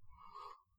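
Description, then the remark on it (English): A single short voiced yawn, a drawn-out breathy tone that swells in the middle and then trails off, lasting under a second with no talking over it. “You're yawning in the middle of an episode, buddy.”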